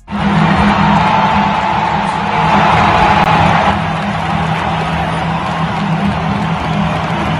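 A huge stadium crowd roars and cheers continuously as the blitz box runs out, a dense, loud wall of voices with whoops and applause rising in a swell partway through, sustained for the whole stretch without a break.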